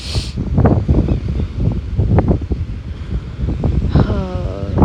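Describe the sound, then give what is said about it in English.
Steady wind buffets the microphone over a rumbling wash of surf at the beach, a loud, continuous roar with rising and falling gusts and a brief higher tonal sound near the end. “It's beautiful. The beach is beautiful. Nature is beautiful. The water is beautiful.”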